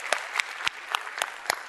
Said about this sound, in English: Can we just because we want to, all campuses, online as well, can we just celebrate that with just a big clap? The guilt is gone.